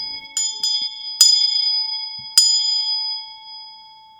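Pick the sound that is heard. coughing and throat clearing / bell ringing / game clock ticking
bell ringing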